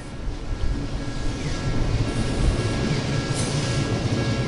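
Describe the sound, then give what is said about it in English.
A long-distance train full of passengers rumbles steadily past a level crossing in Tokyo, Japan, a continuous loud roar with rattling wheels and a faint high whine, no voices present. “At a level crossing, I watch a long-distance train go past, full of passengers.”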